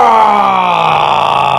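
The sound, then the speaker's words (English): A loud, sustained vocal roar from a human voice imitating an animal, a single drawn-out growling cry with a slowly falling pitch, lasting over a second. “Roar!”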